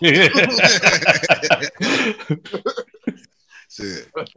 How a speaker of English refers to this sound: My cough.